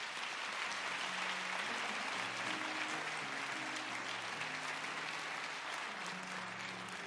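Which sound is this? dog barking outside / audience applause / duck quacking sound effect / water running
audience applause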